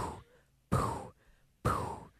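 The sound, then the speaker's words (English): A person imitates how they breathe while asleep: two loud, breathy exhales in a slow rhythm, each sharp at the start and trailing off, separated by quieter inhales. “That's apparently how I breathe in my sleep.”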